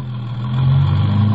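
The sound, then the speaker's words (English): A large car's engine hums steadily with a deep, droning tone, growing slightly louder as it pulls into traffic in Chicago, with no voices over it. “So I got in, and the car nosed its bulk into traffic.”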